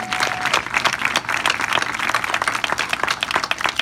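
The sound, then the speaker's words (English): A large audience at a centennial celebration event in San Pedro claps together for the event organizers in a steady, dense wash of applause, loud and continuous for a few seconds with no voices standing out. “How about a round of applause for all of these rock stars?”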